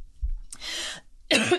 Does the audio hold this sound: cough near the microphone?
yes